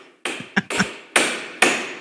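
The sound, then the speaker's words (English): A hammer strikes a chisel, as if chopping off toenails, in five sharp, loud blows at an uneven pace, each knock ringing briefly with a metallic tone before fading. No voices are heard. “That's me chopping my toenails off.”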